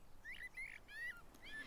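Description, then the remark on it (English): A blackbird sings a short run of four clear, fluting whistled notes, each a brief upward slur, spaced unevenly and fairly soft against a faint background hiss. “So this won't be an Italian blackbird, but he will sympathise with this Italian story.”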